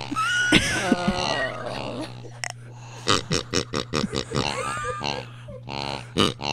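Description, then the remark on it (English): A squeaky toy pig oinks repeatedly, first in a few drawn-out squeals, then in a quick run of short rhythmic bursts, with a faint steady hum underneath. “So I just brought him in because I would like to do annoyingly bad rap and just use the pig.”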